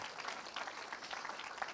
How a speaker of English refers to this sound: And yeah, you can give her a clap.